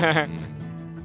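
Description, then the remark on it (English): A voice imitates an owl's soft, purring trill: a brief, bright warbling burst that settles into a lower, steady hum, moderately loud. “Yes, And she'll, it's not purring, but it's kind of like the owl equivalent.”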